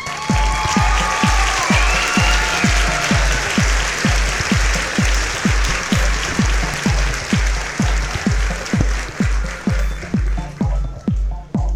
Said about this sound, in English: And clap. Thank you.